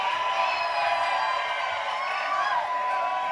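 A crowd cheers and whoops for a band in a steady, loud roar of applause that holds its level for the full few seconds, with scattered high-pitched shouts rising above the mass of voices.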